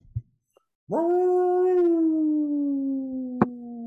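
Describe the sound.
A person lets out a long, sustained howl in imitation of a lone wolf, starting with a rising swoop and holding a steady, slowly falling pitch, loud, with a brief click near the end.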